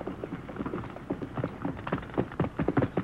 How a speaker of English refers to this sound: Quiet. That horse is coming.